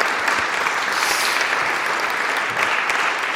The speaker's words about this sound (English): Thank you very much. A round of applause